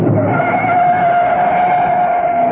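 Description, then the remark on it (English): A car speeds in loud on an open road and swings down a lane, its tires squealing in a long, steady skid over a rumbling engine, with no one speaking. “Mrs. Peel swung after it down a lane.”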